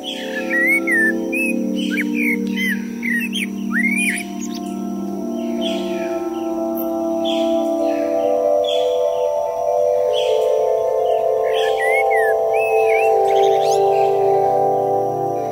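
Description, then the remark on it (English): Several small garden birds chirp and twitter in quick, overlapping bursts for the whole stretch at a bird table at a house on the edge of Sheffield, recorded by a microphone placed on the bird table, over a steady low background rumble; no one speaks. “And I put a microphone on our bird table in my parents' house on the edge of Sheffield.”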